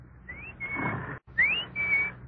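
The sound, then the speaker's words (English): A person whistles an imitation of the bird that jumps out of a clock to tell the time: two short bright phrases, each a quick rising glide followed by a steady held note, with a brief pause between them. “My father had a clock that told the time with a bird jumping out. The bird whistled, like this.”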